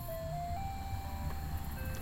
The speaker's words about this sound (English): Oh, sounds like that must be the ice cream truck I passed earlier. Coming to make the rounds over here.